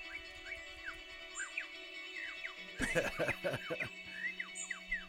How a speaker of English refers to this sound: But when the male superb lyre bird takes the stage, he gives new definition to the term siren song. Like many birds, his voice is a prime way to woo the ladies.